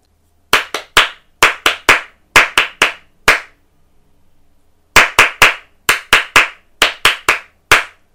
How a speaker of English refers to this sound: Okay, the last one is just your hands. So you just need your hands to do some clapping. And can you listen carefully to the pattern first?